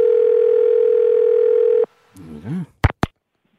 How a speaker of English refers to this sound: All right, I'll just put the numbers in the phone here. And let's just ring this person here now.